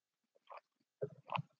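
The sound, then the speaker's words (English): Quiet mouth sounds: a short wet slurp, then a couple of gulping swallows in quick succession as someone takes a sip of water. No one speaks. “I'm so, so incredibly dehydrated today, so I'm sorry that I'm taking sips.”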